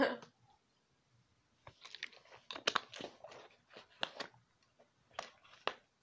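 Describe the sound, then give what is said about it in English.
Someone drinks water in a series of irregular gulps and swallows, with wet, clicky mouth sounds in short bursts and quiet pauses between them. No one speaks. “Sorry, you guys have to hear me drinking all this water.”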